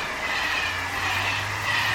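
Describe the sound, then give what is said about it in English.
A steady rumbling train ambience, with a continuous low hum and broad rushing noise as if riding inside a moving rail car, constant and fairly loud with no voices; the train cars float a few feet above a line of conductor stones as the ground rushes by. “So the train cars of the Lightning Rail float a few feet above a line of conductor stones that stretch off into the distance, and the ground rushes by with a quiet murmur of air.”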